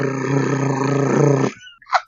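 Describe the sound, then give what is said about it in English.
A person imitates a car engine with one sustained, buzzy, low-pitched vocal drone for about a second and a half, fairly loud and steady, then a brief breathy puff. “Yeah, I think you just need to make like the sound a car makes for a while.”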